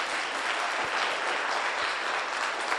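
A crowd of people at a church service clapping their hands together for Jesus, a steady, dense wash of applause that stays loud and even for a few seconds with no voices standing out.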